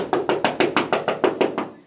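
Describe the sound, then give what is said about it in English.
A rapid, steady series of about ten loud knocks on a door, evenly spaced and forceful, with no voices. “It's a police knock.”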